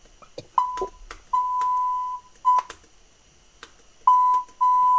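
Steady mid-pitched electronic beeps in an irregular pattern of short and long tones, like Morse code, with brief clicks and knocks between them and no voices.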